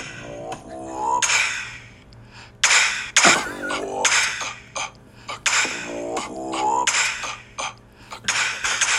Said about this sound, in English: The cough is hilarious.